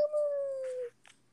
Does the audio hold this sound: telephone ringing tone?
no